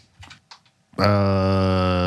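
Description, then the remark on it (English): A few quick taps on a computer keyboard, made while searching something online, clatter at a moderate level for about a second, then a loud, steady buzzing tone abruptly takes over and holds to the end. “I'll Google my keyboard's quick.”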